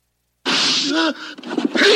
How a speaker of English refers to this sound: I know it's a little late in the show, team, but I think it's time for a buck slap.